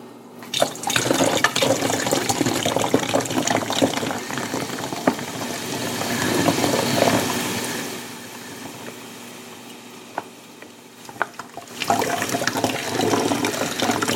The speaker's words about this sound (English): Again, I'm not pouring it very fast because even though this would be half full, there's a lot of foam on top. So I'm pouring it relatively slowly.